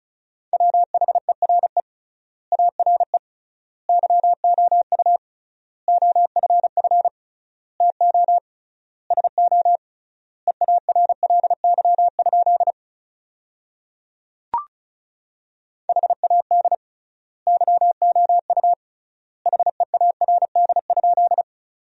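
Rapid Morse code practice tones at about 35 words per minute, sending sentences built from the 400 most common words with triple word spacing, a steady mid-pitched beep keyed in quick dots and dashes, words separated by long gaps, with one brief click partway through.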